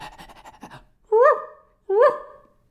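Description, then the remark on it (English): A person mimics a dog, with a short burst of quick, rhythmic panting breaths followed by two separate voiced, bark-like yelps. The sounds are fairly loud. “I was doing a children's play, you know, and they had me dressed up like a dog. Bow, wow, wow, and woof, woof, woof, and this is how I talk.”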